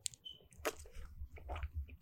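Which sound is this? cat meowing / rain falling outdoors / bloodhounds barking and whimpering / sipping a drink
sipping a drink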